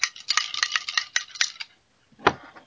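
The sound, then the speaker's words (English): Ice cubes clink and rattle against a glass of iced tea as someone drinks and plays with the ice, in a quick run of bright, sharp taps for over a second, then a pause and one more louder clatter. No one speaks. “In the background, it sounds like somebody is drinking iced tea and is playing with the ice.”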